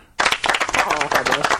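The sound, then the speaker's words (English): A short burst of applause sound effect starts abruptly and holds steady, a dense crackle of many hands clapping with no voices. “But I'm going to give you the round of applause, because as well as being completely right, I'm also really generous.”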